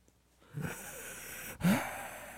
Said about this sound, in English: Yeah, just breathing. Just wanted to give you some sensual noises in your headphones over there. That was not very sensual. That sounded like you needed to see a doctor.